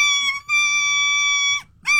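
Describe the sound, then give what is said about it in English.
A person imitating a duck call: a loud, reedy, nasal tone held steady for about a second after a brief opening blip, then a short break and another note starting. No talking. “Since 6 a.m., I've been doing the duck call right.”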